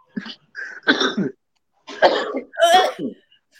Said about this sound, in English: Oh. Was literally a sneeze.